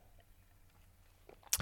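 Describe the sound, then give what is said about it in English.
Near-silence with a low hum gives way to a single short, sharp slurping sip of tea near the end, a brief bright burst with nobody speaking. “So, all right, tea sip.”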